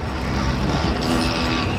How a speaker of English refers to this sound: As in most of the world's cities, there's one sound that dominates in Tunisia's capital, Tunis: the traffic.